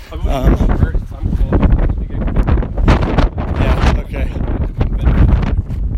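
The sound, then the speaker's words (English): Loud, gusty wind buffets the microphone in continuous rumbling blasts at sunrise while hiking down the South Kaibab trail, with a person talking underneath the roar. “Yeah, alright, it's a little bit windy, as you can probably tell from the audio.”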